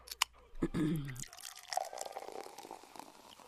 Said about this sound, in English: Pour me something strong and, you know, tough. Okay, Four Loko it is.